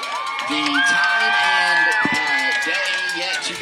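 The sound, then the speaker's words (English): A large stadium crowd of Lumberjack football fans cheers in a loud, sustained roar at an announcement that their team will play Buna next week, with scattered shouts and a high, drawn-out whistling tone riding over the din for several seconds. “The Lumberjack fans, you hear them cheering.”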